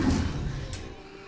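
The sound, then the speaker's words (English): A heavy door rumbles as it slides, then shuts with a short, sharp thud partway through. The low grinding tails off quietly afterward, and no one speaks. “Close the door! Does this thing work? It's closing! Close faster!”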